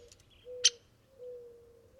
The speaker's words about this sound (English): We home in on a ladder-backed woodpecker making sharp peak calls.